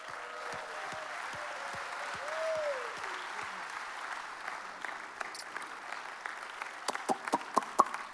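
A crowd applauds steadily throughout, a dense patter of many hands clapping, with a few sharper, louder individual claps standing out toward the end.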